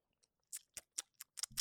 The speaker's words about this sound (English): Salud. We have to do ASMR too, a little slurp.